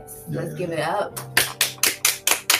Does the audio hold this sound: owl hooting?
no